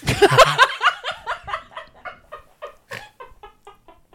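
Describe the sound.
A person does a saliva-filled cartoon duck voice impression, sputtering a fast string of raspy, quacking syllables, loud at first and gradually tapering off.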